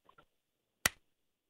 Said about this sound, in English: And this one's the clap?